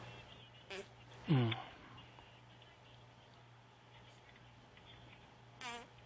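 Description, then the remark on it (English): A few squelchy armpit fart noises, made with coarse armpit hair getting in the way: a short one, then a louder sputtering blurt, and another after a long pause, all over a steady low hum. “The coarse hair is getting in the way of the farting and it doesn't sound like it used to.”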